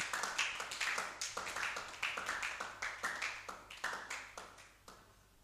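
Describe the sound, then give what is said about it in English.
An audience claps for Christ during a sermon, a dense, steady stream of sharp, overlapping hand claps that keeps a loose rhythm for several seconds before tapering off slightly at the end. No one speaks. “Let's clap for Christ.”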